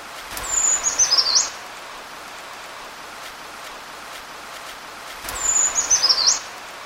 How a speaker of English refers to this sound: So that again was the brown creeper, a bird that's, I would say, uncommon in our forests around here. It's not super difficult to find, but you don't find them all the time.